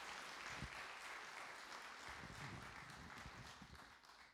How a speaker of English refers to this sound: And as she comes, and as they all come, do a little clap. It kind of encourages them. That would be great.